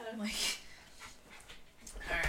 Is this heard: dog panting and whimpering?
yes